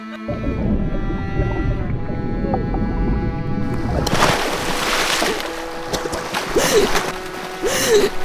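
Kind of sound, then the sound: human body sound, gasping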